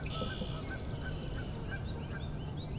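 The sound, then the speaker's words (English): Canada geese honk faintly in the distance, scattered calls drifting in over steady outdoor noise while a songbird delivers a rapid, ringing trill through the first half. “All those distant vocalizations are Canada goose.”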